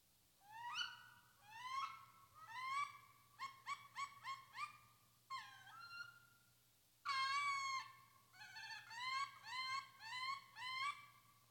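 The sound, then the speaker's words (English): A wood duck call sounds over and over: loud, rising squealing whistles in quick clusters with short pauses between bursts, over a faint low hum and no talking. “That doesn't sound like the pintail. It doesn't sound like the turkey. That's the wood duck.”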